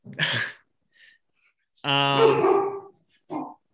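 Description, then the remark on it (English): A female dog barks, wanting jerky: one sharp bark, a pause, then a longer, drawn-out vocal bark that is almost a whine, followed by a short final yip. No one speaks. “You said jerky. She wants some.”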